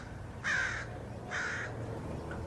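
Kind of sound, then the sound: bird, crows cawing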